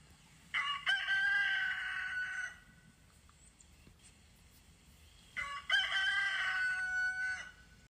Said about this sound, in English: Next, I'm going to play a recording of our rooster Chanel.